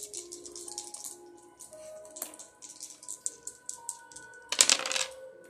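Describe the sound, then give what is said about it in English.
Dice rattle and click in quick bursts, ending in a louder clatter as they tumble across a surface, with soft sustained music tones in the background. No one speaks. “Let's roll the dice and find out the truth.”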